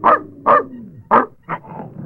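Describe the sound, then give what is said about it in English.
Blackie, a dog belonging to old Andy the elevator operator, barks four times in quick, loud bursts, with a low, sliding whine-like tone between the first few barks and no one speaking. “Where's that dog? Probably in the elevator.”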